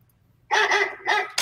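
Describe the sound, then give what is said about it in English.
A dog barks loudly, two full harmonic barks in quick succession, with the sharp start of a third cut off at the end. No one speaks. “Oh, another dog.”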